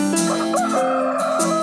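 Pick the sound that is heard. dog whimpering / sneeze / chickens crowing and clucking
chickens crowing and clucking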